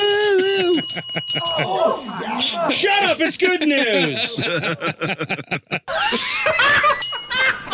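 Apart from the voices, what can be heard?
bell being rung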